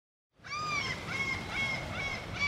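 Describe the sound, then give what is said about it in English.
Seagulls soaring over a beach on a sunny day call repeatedly in a steady series of bright, slightly nasal cries, clear over a soft wash of beach background noise, with no talking. “As you can hear, I'm back at the beach. The sun is shining, the seagulls are soaring, and the water is absolutely beautiful.”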